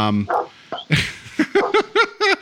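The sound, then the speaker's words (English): Dogs outside a window bark in a quick, insistent series of about five or six sharp, fairly loud barks, preceded by a short jumble of yips and scuffling noise. “so you could go see what's going on with your dogs”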